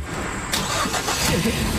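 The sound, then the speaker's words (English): The engine of a mother's donated car cranks and turns over, a brief whirring start followed by the steady rumble of the motor catching, with no talking. “Mama car? Yes, this is mommy car. Oh my goodness, I love it. Look, hi. Start her up. Start it up.”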